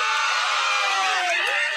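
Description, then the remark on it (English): A crowd of children cheers and shouts at the news that Springfield Elementary is closed forever, a loud, sustained burst of high-pitched voices, overlapping whoops and yells blending into a dense wall of excited noise. “Oh, you're cheering now, but someday you'll...”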